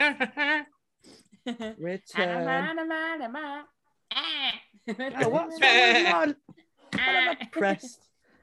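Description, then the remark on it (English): A person imitates sheep bleating: several wavering, quavering baa sounds in a row, loud, with short pauses between bursts and giggly vocal noises mixed in. “His name was Prickles, a sheep found after 7 years in Tasmania”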